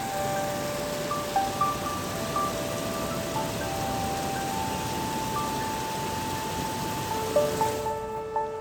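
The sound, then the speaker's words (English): Heavy rain pours down on a backyard in a steady, dense hiss that fills the whole recording, heard while lying in bed, with some faint sustained tones drifting over it and no one talking. “It's raining so hard right now.”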